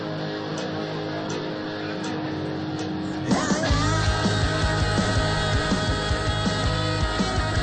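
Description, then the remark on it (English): Dense intro music for the sports radio show Two Men On plays throughout, and partway in a loud scream bursts out over it, after which the music grows fuller and louder with a steady pounding beat. “That's a long bleed, but I knew the scream was coming and I had to wait for it”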